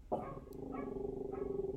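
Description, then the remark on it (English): A pet dog barks three times at a steady pace, the barks carrying over a low sustained hum, moderately quiet, with no one talking. “my dog's barking.”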